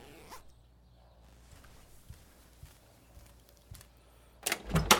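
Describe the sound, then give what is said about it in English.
A few soft, scattered knocks and shuffles, then a quick, loud trouser zipper pulled up near the end as someone puts on their pants. “Just a minute. Put my pants on.”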